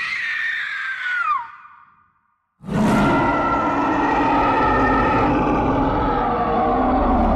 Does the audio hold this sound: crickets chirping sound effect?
no